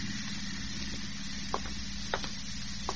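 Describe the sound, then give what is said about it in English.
A steady low engine hum of a car outside that has been following for 200 miles drones, quiet and continuous, with a faint hiss over it and a few soft clicks breaking through. “No, there's a car out there. It's been following me for the last 200 miles.”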